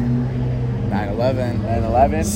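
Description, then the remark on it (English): An F8 sports car engine hums with a steady low drone as it drives past at a car show, its tone holding even throughout while people talk over it. “So we got an F8 right behind it.”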